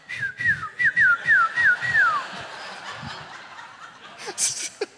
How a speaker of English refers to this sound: So he does the whistle. And this guy comes over.